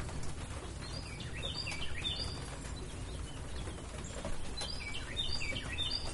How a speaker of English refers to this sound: Don't focus on the bird. You're going to want to, but just block it out.